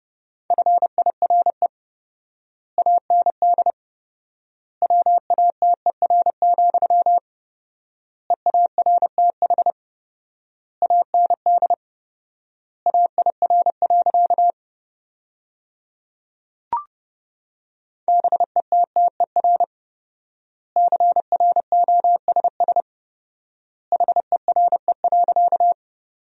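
Morse code sent at 30 words per minute, sentences built from the 400 most common words with fourfold word spacing: rapid bursts of a single mid-pitched beep, grouped into words separated by long pauses, with a brief click partway through and no voices.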